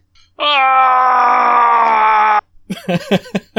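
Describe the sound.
A voice lets out a loud, steady mock scream held for about two seconds at one pitch, imitating the scream at the word of the day on Pee-wee's Playhouse, followed by a few seconds of quick talking.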